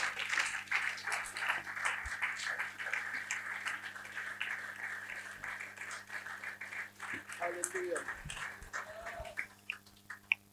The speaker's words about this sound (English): God bless you for clapping for him. Now do it to Jesus. Hallelujah.